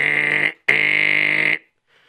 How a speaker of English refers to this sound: And suddenly, there was a ringing of the bell.